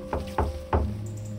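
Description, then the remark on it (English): Three solid knocks on the front door of a house, heavy and low with a hollow thud, coming in a slightly uneven rhythm over a faint steady hum. No one speaks. “I knocked.”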